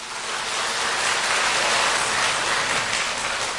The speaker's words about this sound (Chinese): 今天索达杰堪布带来的报告是药师佛与中医，让我们以热烈的掌声啊欢迎堪布的演讲。